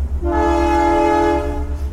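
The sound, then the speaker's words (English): A loud, sustained Canadian Pacific train horn blast holds steady for over a second over the low rumble of the passing train, with no talking. “A Canadian Pacific train coming through before I wrap up the show. So I'm just waiting for the big boom, big beep here, so...”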